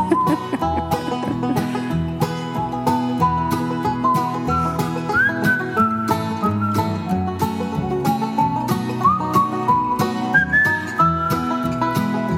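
The musician who played the instrumental accompaniment whistles a bright, steady melody over it, the clear tones rising and gliding above the rhythmic backing for the whole stretch, with no talking.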